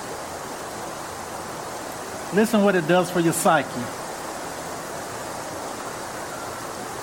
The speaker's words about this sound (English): Listen to this. Listen to the water. Listen to what that does for your nerves.